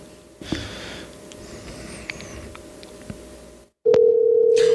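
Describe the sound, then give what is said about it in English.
A crackly, hissing phone line with a few faint clicks drops to silence, then a loud, steady telephone dial tone starts abruptly and hums continuously to the end, during a call that goes unanswered with the phone not ringing. “She's not picking up because she's a stupid butthead. Her phone's not even ringing.”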